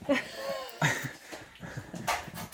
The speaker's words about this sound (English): I was in San Diego last week, and I kept hearing it, these sea lions. And I kept trying to track them. Barking? Yeah, but I couldn't find them. These are California sea lions.